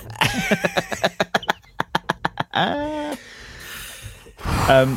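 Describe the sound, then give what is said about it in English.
A voice imitates a huffing dying deer: a quick run of about a dozen sharp, breathy huffs, then drawn-out groaning, bleating cries, fairly loud, with no other talk. “That's me. It's the huffing dying deer.”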